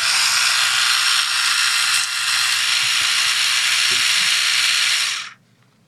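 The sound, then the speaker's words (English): A pencil being sharpened in an electric sharpener: a loud, steady, high whirring grind that runs for about five seconds, then cuts off abruptly into quiet. No one speaks. “But I think I'm gonna sharpen this pencil first.”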